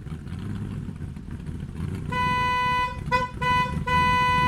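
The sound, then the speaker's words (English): A low rumbling murmur gives way to a loud, bright Trojan trumpet call: long sustained brassy notes, broken twice by short pauses, ringing out to the end. “The Trojan's trumpet!”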